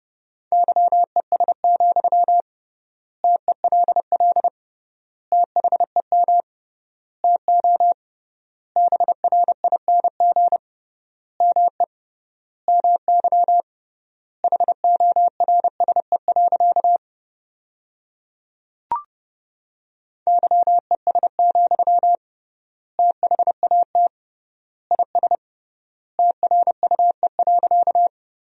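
Morse code sent at 30 words per minute with 3x word spacing, sentences made from the top 500 words: a single steady, mid-pitched tone keyed in quick dots and dashes, grouped into bursts with clear pauses between words, and a brief click midway.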